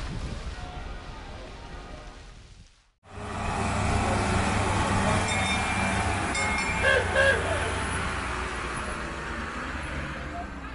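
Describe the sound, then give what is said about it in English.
A small tourist train running from Jaffa Gate through Jerusalem's old city down to the Western Wall rumbles along with a steady engine drone and road noise, briefly cutting out near the start, with a couple of faint high tones sounding midway. “We're on the little train that goes from Jerusalem's Jaffa Gate and weaves through the sacred old city down to the Western Wall to pray.”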